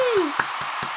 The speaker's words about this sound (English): And the crowd goes wild.